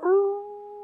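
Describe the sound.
A single loud wolf howl imitated by a human voice: a steady, sustained tone rising in quickly and holding level for under a second.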